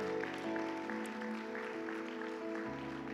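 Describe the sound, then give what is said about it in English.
An audience at a Christian worship service applauds in a steady wash of clapping, with sustained, held musical chords continuing underneath throughout. “Come on, let's give all those wonderful people a big hand clap.”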